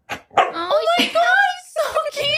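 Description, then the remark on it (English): A dog named Mocha gives a run of loud, drawn-out barks that stretch into whining, howl-like yowls, several vocal bursts in quick succession over about two seconds. “Oh, my God, your dog.”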